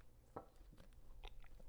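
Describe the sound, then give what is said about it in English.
A few quiet sips of coffee, short slurping bursts spaced irregularly over a couple of seconds, with no talking. “Let me sip my coffee before we get into this.”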